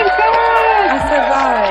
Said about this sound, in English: Getting the high budget applause right now.